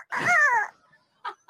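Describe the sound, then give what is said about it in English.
A person imitates a dog barking: one drawn-out, falling woof, then after a brief pause the start of a shorter second bark, fairly loud with no other talk. “You could just bark or meow.”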